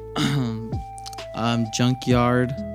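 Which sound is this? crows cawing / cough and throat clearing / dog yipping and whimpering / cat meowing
cough and throat clearing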